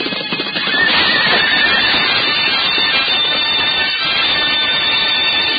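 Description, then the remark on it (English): Horses whinny shrilly over a dense, continuous rumble of hooves pounding turf as mounted knights with couched lances charge toward each other across a green field, loud throughout, with no voices. “Once again, they move toward each other with mortal intent, flying hooves pounding the turf like drums of doom.”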